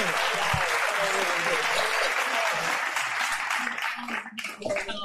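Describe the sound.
A steady, loud burst of applause from a crowd welcoming a guest who has just walked into the building: dense clapping fills the whole stretch before thinning slightly near the end, with a few voices mixed in.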